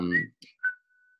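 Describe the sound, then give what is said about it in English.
A person whistles, ending on one clear, steady note that fades gently, right after a brief voiced sound and a soft breathy puff. Fairly quiet. “You're whistling to the great.”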